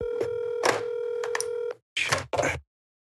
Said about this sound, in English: Wait, why is she calling me? I feel like we're doing phone a friend.